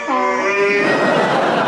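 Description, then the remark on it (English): A donkey, one of a couple used as backing in a musical performance, brays loudly, one drawn-out call that starts as a strained, tonal note and breaks into a rough, raspy bray. No one speaks. “I'm also using a couple of donkeys as well to make up the numbers.”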